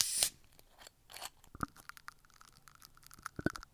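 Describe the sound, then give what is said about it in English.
The cap of a green soda-style bottle labeled Attitude Energy Red Eye is twisted off: a short burst of airy hiss at the start, then a string of small crackling, ratcheting plastic clicks. No one speaks. “Let's crack it open and give it a taste.”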